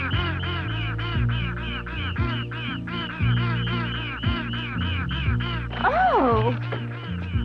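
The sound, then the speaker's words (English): Ducks quack continuously in a dense, overlapping chorus, the calls loud with a steady rhythm throughout, plus a few higher wavering squawks near the end. “You poor ducks.”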